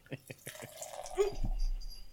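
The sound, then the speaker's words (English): A freshly opened amber beer from Anderson Valley pours into a glass, a few quick taps giving way to a steady gurgling stream with soft fizzing behind it, moderately loud for about two seconds. “And the pour.”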